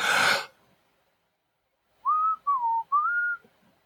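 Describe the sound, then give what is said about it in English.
A person whistles three short, clear notes in quick succession, the middle one sliding downward, preceded by a brief breathy exhale; fairly loud with no talking. “If you whistle, it's going to know.”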